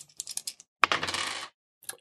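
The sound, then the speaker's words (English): Dice clatter and tumble across a hard table: a few light taps, then a sharp toss that rattles for about half a second before settling, with a faint click afterward. “What's up with the dice?”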